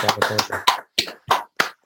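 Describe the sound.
Scattered applause from a few listeners who were invited to unmute: a brief cluster of overlapping claps, then four separate sharp claps at a slowing, uneven pace, with some voice-like noise mixed in at the start.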